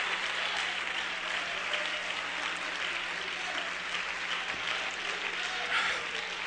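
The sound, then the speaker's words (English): An audience claps steadily in praise of the Lord in the morning, a dense, sustained wash of many hands at moderate loudness, with faint voices mixed beneath the clapping. “Somebody give the Lord a hand clap of praise this morning.”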